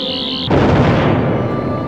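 A high, steady electronic whine from the Doctor's sonic screwdriver overloads for half a second, then cuts into a loud, crackling burst that rumbles and fades away as the screwdriver goes kaput. No voices are heard.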